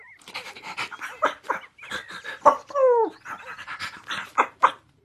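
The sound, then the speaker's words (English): A neighbor's puppy pants in quick, breathy bursts, breaking into a short high-pitched whimper midway before the rapid panting resumes. No one speaks. “He was busy playing with the neighbor's puppy and teaching it tricks.”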